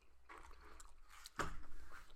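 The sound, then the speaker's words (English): Wet squishing and smacking from chewing two soft, sticky Milk Duds caramel candies, with a sharper, louder chomp partway through and no talking. “You just pop it in your mouth, take two chews, and you're like, A, F, C.”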